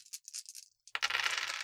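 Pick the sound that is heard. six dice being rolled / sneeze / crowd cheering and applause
six dice being rolled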